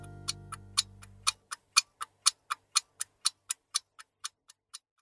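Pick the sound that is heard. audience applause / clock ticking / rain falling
clock ticking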